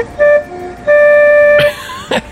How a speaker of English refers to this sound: And he has this distinguishing... recognizable car horn.